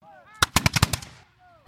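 A ragged rifle volley fired into a crowd in Paris by soldiers of the 14th Regiment of Line: about seven sharp, loud cracks fired in quick, uneven succession, then a final lone shot. Faint wavering honk-like cries sound before and between the shots.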